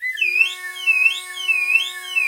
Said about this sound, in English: Excuse me. Dude, somebody's call alarm's going off.